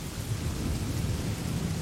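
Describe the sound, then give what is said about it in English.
A steady wash of rain and storm noise on a windy, rainy night aboard an old ship, with a deep, rumbling low end like thunder and wind, continuous and fairly loud throughout, with no voices. “It's a windy, rainy night, and we are aboard an old ship.”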